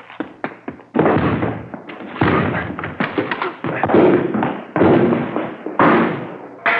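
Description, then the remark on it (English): Police officers force open a door: a quick series of sharp thuds gives way to loud, repeated crashing and splintering bursts, with no voices. “All right, let's go. Hit the door.”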